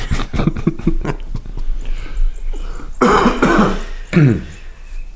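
human body sound, raspy cough

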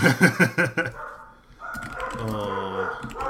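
animal, dogs barking

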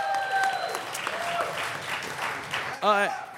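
crowd, applause and cheering

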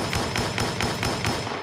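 sound effect, gunshot sound effect

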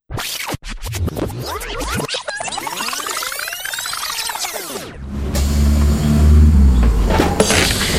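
vehicle, bus engine pulling up

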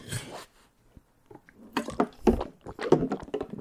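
household object, drinking

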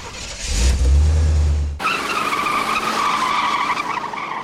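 vehicle, car engine accelerating away

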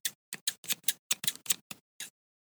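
tool, scissors snipping

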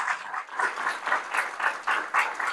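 crowd, audience round of applause

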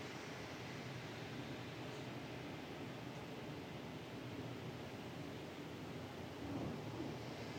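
nature, thunder rumbling

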